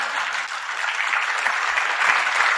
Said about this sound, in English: Shame on you people applauding.